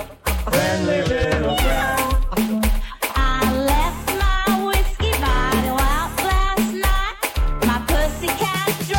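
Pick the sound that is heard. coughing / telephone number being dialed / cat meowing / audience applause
cat meowing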